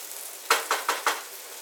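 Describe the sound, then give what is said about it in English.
Food sizzles steadily in a frying pan, a continuous hiss that swells in four quick surges about a fifth of a second apart, with no talking. “You can hear that sizzle in my pan.”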